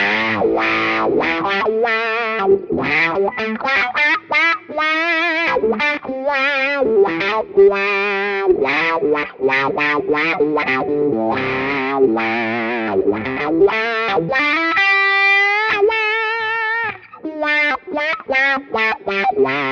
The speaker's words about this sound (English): I got the Boss DS1 going into the wah. Here's my DS1 sound. Adding the wah after the distortion.